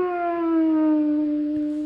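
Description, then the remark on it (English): A ghost yowling sound effect: one long, steady, siren-like wail that slides slowly downward in pitch and holds loud for about two seconds, with no talking over it. “According to the button bar, it's the ghost yowling.”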